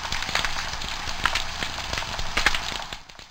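A colony of hundreds to thousands of snapping shrimp crackles underwater along a coastal habitat, countless tiny sharp snaps blurring into a steady sizzling hiss, with a few louder pops standing out. There is no talking.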